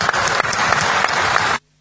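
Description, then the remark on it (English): A burst of audience applause, dense steady clapping from many hands at a loud, even level, cutting off abruptly into silence after about a second and a half. “Well, let's give you a round of applause.”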